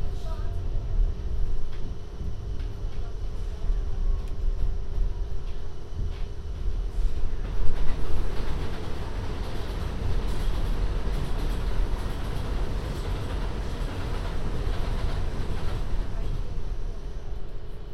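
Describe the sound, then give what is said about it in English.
A Manhattan-bound 7 subway train rumbles steadily along the tracks between stops, heading for 82nd Street: a loud, continuous low roar with metallic rattling and a slight swell in intensity partway through. “This is Manhattan bound 7 train. The next stop is 82nd Street.”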